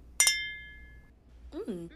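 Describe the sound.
Two wine glasses clink together in a quick double tap, leaving a bright ringing tone that fades over about a second, then a person's voice briefly sounds.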